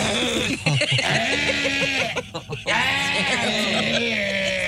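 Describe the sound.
A voice imitates the harsh throat hacking done to remove tonsil stones, producing loud, strained, warbling croaks that sound almost like bleating, running continuously for several seconds with a brief choppy break midway.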